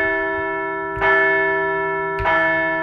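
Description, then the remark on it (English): A large bell rings twice, roughly a second apart, each loud strike blooming into a long, sustained metallic hum with layered overtones that hangs over the whole clip. “So let's ring the bell as the boys look to finally end the snakes.”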